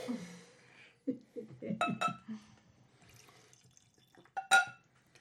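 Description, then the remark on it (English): Four Roses bourbon whiskey splashes briefly into a Glenclaren glass as a small pour, in a few short gurgling bursts, followed by a bright glassy clink, with faint voices murmuring underneath. “So I kind of want to do small pours so you can kind of taste the difference between the two.”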